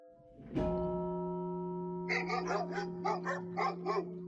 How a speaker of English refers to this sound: Shut up, you damn dogs. Whose dogs are these? We're trying to sleep.